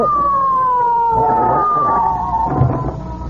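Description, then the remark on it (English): A police squad car called to a robbery sounds a loud siren that wails and slowly winds down in pitch over a rumbling engine, ending with a dull thump and some clatter. “Somebody here called for a squad car.”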